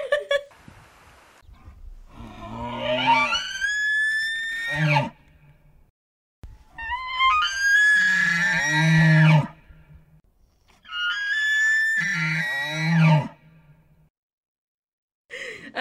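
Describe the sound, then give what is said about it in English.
Three long, high, whistling elk bugles heard in the distance high up in the mountains, echoing, each a drawn-out squealing call that rises and falls before ending in low grunting notes, separated by short pauses with no talking. “Insert sound of elk yelling here.”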